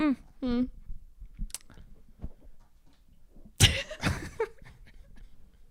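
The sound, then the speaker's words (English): Two sharp coughs burst out one after the other, preceded by a few brief voiced squeaks and hums, otherwise quiet. “Did you just cough on me?”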